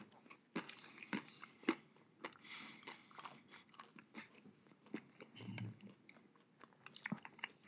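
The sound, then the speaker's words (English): Crisp crunching of a hard, thoroughly roasted, mint-flavored chocolate-covered almond being chewed, with repeated sharp cracks and grinding bites in an irregular rhythm over several seconds, no talking. “It's a very crunchy almond, very thoroughly roasted.”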